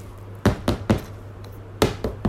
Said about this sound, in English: And the cat was banging on the door.